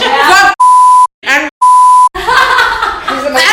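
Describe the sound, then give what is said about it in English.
Two loud, steady censor bleeps, each about half a second, cut into a person's speech, followed by lively talk and laughter. “And we were like, you don't have to beep anything I say.”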